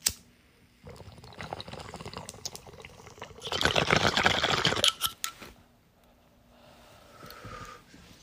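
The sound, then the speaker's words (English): Gurgling water bubbles from a bong hit: a quieter rattling pull builds into a loud, dense bubbling burst, then cuts off, followed by a soft exhale. “go get that and pause me so we can take this rip together.”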